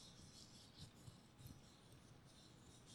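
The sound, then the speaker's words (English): A paper napkin is crumpled steadily, a continuous soft crackling and rustling with a few sharper crinkles, quiet throughout and with no talking. “Now we're going to crumple some paper.”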